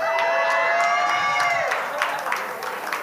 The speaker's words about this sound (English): Irish folks in here, anybody sober enough to clap?